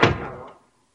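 A single solid thud of a door being shut, with a brief wooden rattle that fades out within half a second, followed by silence. No voices.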